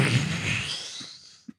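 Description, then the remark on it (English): A voice imitates the fart-like poof of a body turning from flesh to dust: a loud, breathy, hissing burst of air that fades away over about a second, then a short, soft, low puff at the end. “And then when they turn from flesh to dust, I know it's supposed to be like a poof, but it sounds like a fart.”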